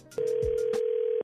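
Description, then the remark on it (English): A phone line rings once for a prank phone call as a single steady, mid-pitched ringback tone lasting about a second, loud and even, with a few faint rustling bursts over it and no voices. “Right now, the nephew is here with today's prank phone call.”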